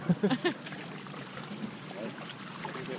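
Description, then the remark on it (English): Sea mullet jumping and splashing in water, some jumping over a net, a steady wet sloshing and trickling with a small splash partway through; a brief burst of voice is heard at the very start. “And is it that it's the mullet that are jumping? You can see a lot of them.”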